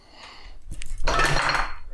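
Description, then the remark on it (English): A light bulb is thrown onto a table: a brief knock, then a loud glassy clatter that rattles on for about a second with no voices. “I've got a light bulb in my hand and Michael's asking me to throw it.”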